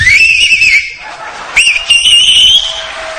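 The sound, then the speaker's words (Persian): Two piercing, loud whistles from a man with two or three fingers in his mouth, each a sustained high warbling tone lasting about a second, with a short gap between them and faint crowd noise underneath. “و ببین این آقا عزم بخوام، این آقا 3 تا انگشتشو یا 2 تاشو گذاشته تو دهنش داره سوت میزنه.”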